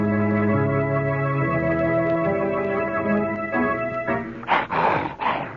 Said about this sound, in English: Lucky. What's the matter, boy? What is it? Why are you growling? Be quiet, Lucky.